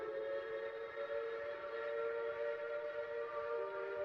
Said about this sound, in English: The train whistles again.